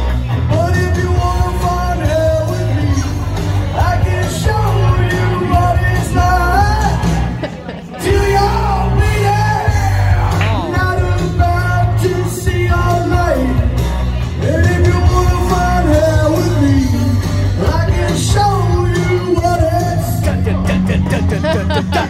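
Rough karaoke-style singing of a punk song in a bar before a crowd: a loud, shouted voice over a dense, driving band, steady and full throughout except for one brief dip partway through.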